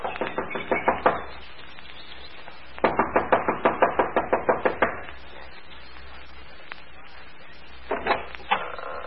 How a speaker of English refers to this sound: gets out of the car, runs up the steps of the lodge to the front door. She knocks impatiently, looking above anxiously.